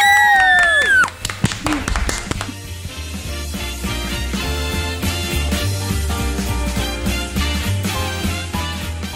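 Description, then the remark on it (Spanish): An audience applauds in a dense, steady crackle of many clapping hands that lasts the whole time, opening with a swooping whistle and cheering voices mixed into the noise, welcoming two sisters who are about to play a Christmas musical piece. “¡Aplausos para recibirlas!”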